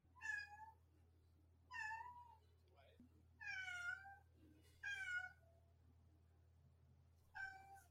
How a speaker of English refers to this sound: Garrett got an actual cat to come make cat noises for our recording